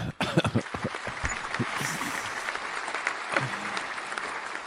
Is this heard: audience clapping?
yes